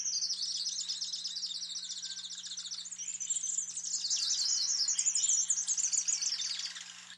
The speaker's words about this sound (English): So that's a duet. So that's a male and female white-shouldered fairy wren singing together. Okay, so this would be a territorial.